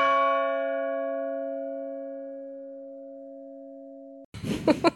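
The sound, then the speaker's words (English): A single deep clock bell toll rings out, its bright overtones fading while the low hum sustains for about four seconds before cutting off abruptly as people begin talking. “And then the clock tolled again.”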